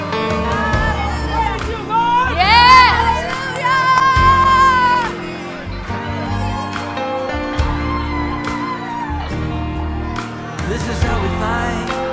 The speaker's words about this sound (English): I want you to lead these people in some dancing and shouting.